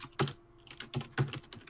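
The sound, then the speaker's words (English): Quick, uneven keystrokes on a computer keyboard as someone searches on Google, a few sharp clicks with short pauses between them, fairly quiet, with no voices. “I'm googling it.”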